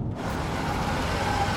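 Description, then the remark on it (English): A car rolls up as a father drops off his children at a spot right out front, its engine and road noise holding steady and fairly loud for a brief moment as it comes to a stop, with no voices. “Dad, you can just drop us off here. There's a spot right out front.”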